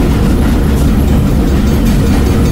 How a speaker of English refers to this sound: Oh my God, trains. No, it gives me anxiety.